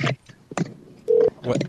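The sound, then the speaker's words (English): A short run of touch-tone keypad beeps as a woman's home phone number is dialed, one steady tone standing out between brief clicky bursts, fairly loud, with no voices. “Okay, here goes her home phone number.”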